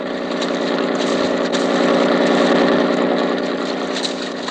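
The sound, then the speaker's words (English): A police launch's motor drones steadily and loudly throughout on San Francisco Bay, a constant throbbing engine roar with no breaks and no voices. “Oh, please, could you not make this boat go faster?”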